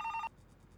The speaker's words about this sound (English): The sound of a phone ringing was pretty damn loud in the new quiet.